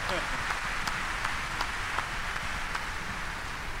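A steady round of applause from many hands for a man who has just given a speech, a dense, even crackle of clapping with a few sharper claps standing out, holding at a constant level for the whole stretch.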